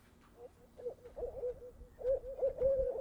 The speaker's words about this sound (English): Off in the distance, owls hooting.